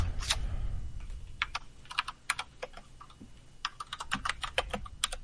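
Rapid clicking of keys on a computer keyboard, irregular bursts of close, crisp taps with brief pauses, over a low background hum and no talking.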